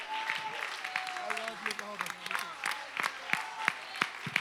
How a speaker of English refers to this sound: Clap your hands and love him now.